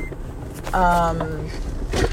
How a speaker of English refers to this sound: I carry so many books with me that the car thinks there's a person in the passenger seat without their seatbelts on.